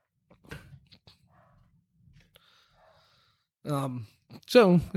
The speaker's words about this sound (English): And pardon, we've got some dogs firing up on our thunderstorm downstairs.